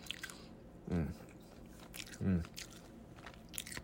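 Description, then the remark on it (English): Someone chews crunchy bacon: two louder, rough crunching bites about a second apart, with small crackly mouth sounds in between and no talking. “All right, as I started chewing more, it got a little better.”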